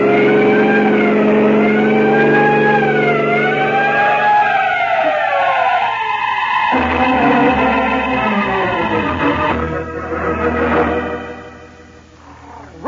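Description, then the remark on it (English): A siren wails in rising and falling sweeps over the steady rumble of a vehicle engine, loud, then the wail fades as engine and road noise continue. “there are some trucks ahead, Peter. Sound your siren.”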